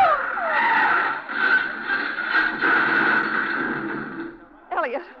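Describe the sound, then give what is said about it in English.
A long, loud screech of car tires skidding as a man drives erratically, grinding on for several seconds before cutting off, followed by a brief startled voice crying out. “Leo, what's the matter with him, the way he's driving? Well, he's going to crash.”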